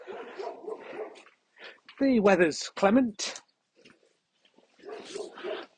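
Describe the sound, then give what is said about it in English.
A dog barks twice in quick succession from inside a house to the left, loud and close, between stretches of a man speaking; the dog does not like the dog Wolf being there. Overcast sky, 3 February 2023. “there's a dog in there. House to the left, right here, that does not like Wolf being on.”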